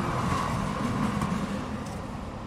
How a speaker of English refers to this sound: Hold on, there's a tram going past. We'll leave it go past.